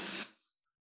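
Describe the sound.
A single sharp, breathy exhale made by a voice imitating breathing, shown as one of the first rhythm patterns learned at birth, a brief hissing burst that quickly fades into silence. No talking accompanies it.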